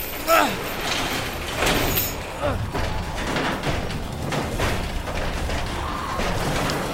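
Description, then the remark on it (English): A garage door in an auto shop is pulled shut by its chain, a loud, continuous rattling rumble with a few heavy clunks along the way, while voices shout over it. “Close the garage!”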